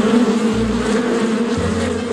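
A dense, steady drone of bees buzzing, loud and continuous, with a low hum that rises and falls slightly as the swarm shifts.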